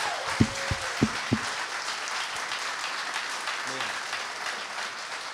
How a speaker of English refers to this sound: So can we just clap for the people who stepped out?